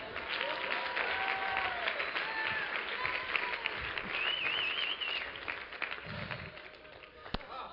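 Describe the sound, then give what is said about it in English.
Sustained audience applause, a dense crackle of many hands clapping with a few whoops and cheers rising above it, steady throughout before tapering slightly near the end. “Would you give Big Chief Wampum Stick a hand?”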